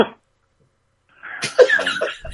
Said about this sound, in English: This motherfucker just sneezed before he called me. Did he just sneeze? Yes. He just fucking sneezed before he said anything.